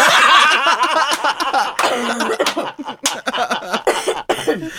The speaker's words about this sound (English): Okay, now cough.